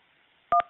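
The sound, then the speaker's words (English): A single telephone keypad button press on a Marriott automated phone menu: one short, loud dual-tone beep lasting about a tenth of a second, standing alone against a faint, quiet background with no talking. “Pour le service en français, appuyez sur 3.”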